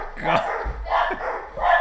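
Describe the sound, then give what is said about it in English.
A dog barks three times in quick succession as the mail arrives, about evenly spaced, fairly loud, over a low background rumble. “We got Darking Bogs and Barking Dogs.”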